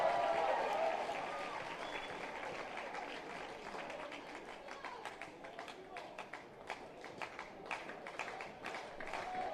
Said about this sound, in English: The crowd coming alive.